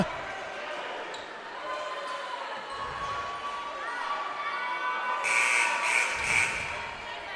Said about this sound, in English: Not really sure what those three buzzes were for from the scorer's table that just stopped play.